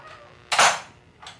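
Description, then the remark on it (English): A door swings shut with one sharp, loud bang that rings briefly, followed about half a second later by a softer second knock as it settles. No voices. “The door swung shut.”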